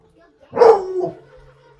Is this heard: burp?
no